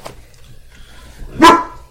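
A dog gives a single sharp, fairly loud bark, standing out against a quiet, low background hum. No one is talking.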